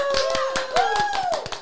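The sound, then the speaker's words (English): A short burst of lively applause for a special guest, several sharp claps in quick succession, with a sustained high-pitched voice or whistle rising and falling over the top as someone cheers. “Round of applause.”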